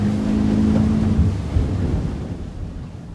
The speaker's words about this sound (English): Once there, the group split up amongst the many boats in Captain Tofield's fleet and headed out to the open waters just as the sun began to rise.